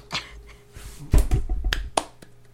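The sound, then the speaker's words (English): A few scattered hand claps, sparse and irregular, with a short burst of rustling in the middle; brief, with no voices. “Please clap.”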